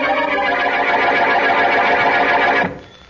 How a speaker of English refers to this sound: As we return to our story, Boston Blackie and his friend, Mary Wesley, ring the doorbell at Mrs. Trilling's apartment.